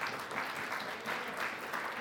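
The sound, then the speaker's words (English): A crowd gives God a hand clap during a sermon, many hands overlapping into a dense, even patter of applause that holds at a moderate level throughout, with no voices standing out. “Give God a hand clap for doing that.”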